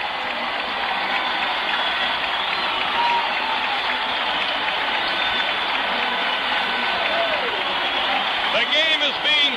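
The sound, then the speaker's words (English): A huge baseball stadium crowd cheers and applauds after Willie Mays of the Giants hits a ground-ball base hit to left field for his 3,000th career hit, a loud, unbroken roar that holds steady for the whole stretch, with a few shrill whistles rising above it near the end. “Listen to the crowd.”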